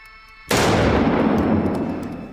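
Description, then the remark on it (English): Two rapid gunshots from a gun that must be cocked before each shot, fired one at each of two targets as fast as possible. They blur into one sharp, loud blast, followed by a long booming tail that slowly fades, with no voices. “I'm going to bring the gun up, fire two shots, one for each target as fast as I can.”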